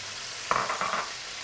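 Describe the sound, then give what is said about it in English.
Pearl onions sauteing in a pan over a raised flame: a steady, fairly soft sizzle throughout, with a short burst of louder crackling and scraping midway as they are stirred. No one speaks. “Now we raise the flame, and now it's time I want to saute this patera. Okay, now we put the pearl onion.”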